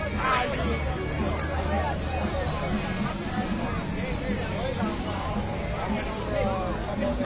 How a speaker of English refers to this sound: Very nice crowd here at the feast. Again, you're watching. This is Cranston, Rhode Island, their annual feast.